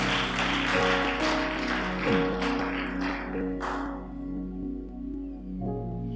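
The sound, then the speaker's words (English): A crowd claps hands together in a dense, continuous patter over a steady low tonal hum, the clapping thinning out after about four seconds. “Clap your hands, oh you people.”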